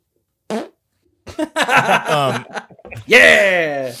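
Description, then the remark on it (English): A brief sputter, then a long, squeaky, wavering fart mixed with chuckling voices, ending in a loud drawn-out blast. “I farted at least 7 times on this podcast.”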